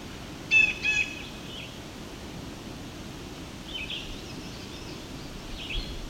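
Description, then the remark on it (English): A red-eyed vireo sings short, bright phrases: a clear burst near the start, then fainter, separated phrases later, over a steady background hiss with no talking. “It's a Riverio here too.”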